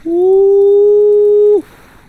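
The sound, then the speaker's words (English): A voice imitates a howling wind coming off the shoreline, with one long, steady, loud 'ooh' held at a mid pitch for about a second and a half, dipping briefly at the end before fading into quiet. “It makes a howl. A howl of a wind comes off the shoreline.”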